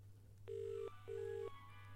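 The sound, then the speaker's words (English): A telephone that has just been dialed rings twice in short, even bursts, a steady electronic ringback tone heard down the line, with a low hum running underneath throughout. “I dialed the phone. I hear ringing down the line. And then we hear ringing in the den.”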